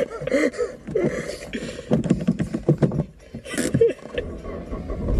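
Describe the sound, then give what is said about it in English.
A car's starter cranks in rough, uneven bursts as someone tries to restart the engine in neutral after it stalled in reverse while leaving a parking bay. It sputters and grinds without settling into a steady idle. “So that's neutral. Start the car.”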